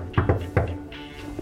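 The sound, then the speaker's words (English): Knocking on the door of Paloma Faith's hotel room: two quick, dull thuds, then a third after a short pause, followed by a couple of fainter taps. No one speaks. “So let's go and knock on the hotel room door of Paloma Faith.”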